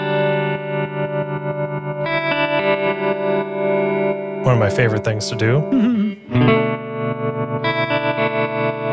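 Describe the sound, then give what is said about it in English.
Sustained electric guitar notes pulse with a tremolo effect, placed between the amp and the cabinet and after the reverb, whose throbbing rate speeds up and slows down as an expression pedal is swept, with a swirling stretch in the middle. A person speaks briefly over the playing. “So the click turns the expression on and off, or turns the trem on and off, and then the sweep of the pedal changes the rate.”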